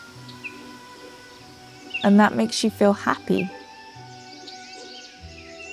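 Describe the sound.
Soft bird chirps twitter faintly from the trees of a forest, scattered, with a few brief calls near the end. A calm voice speaks briefly in the middle.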